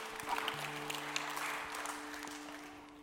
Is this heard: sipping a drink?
no